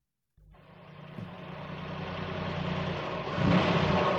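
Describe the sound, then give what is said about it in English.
A car engine starts up abruptly and revs steadily, its roar growing louder and more strained over a few seconds, with no voices. “I thought that bit was longer, that sound effect.”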